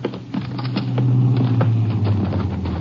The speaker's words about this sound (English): And there's a car coming now, Jace.